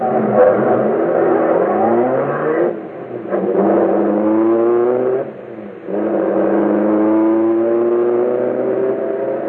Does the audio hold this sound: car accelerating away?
yes